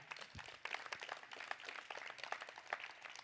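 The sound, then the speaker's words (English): An audience claps together in a dense, steady wash of applause, many overlapping hand claps blending into a crackling roar at an even level, with no one speaking. “You can clap for that.”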